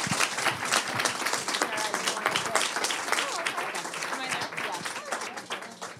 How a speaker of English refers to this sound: So everybody give a big round of applause